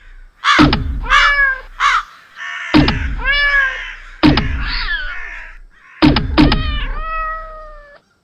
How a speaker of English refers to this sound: The crows, they're retreating.